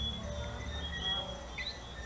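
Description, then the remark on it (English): A soft, steady high-pitched insect drone hums continuously at night, with a couple of brief faint chirps over a low rumbling background; no one speaks. “Listen to the little insects”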